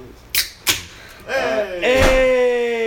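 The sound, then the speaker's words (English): A door slams shut twice in quick succession with loud bangs, then raised voices break in and another heavy thump lands beneath them. “Oh my gosh, you slammed that door.”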